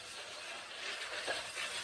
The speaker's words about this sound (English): So, first, before I get to that, I'm at the train station here in Kyiv, and we've been seeing people rushing to this station this morning, trying to get out of the city. There is some confusion here.